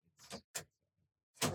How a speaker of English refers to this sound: Can you open that door? I think it shouldn't affect the noise too much.